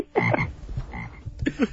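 A frog croaks in loud, throaty bursts, a few rasping calls in quick succession with short pauses between them, no voices present.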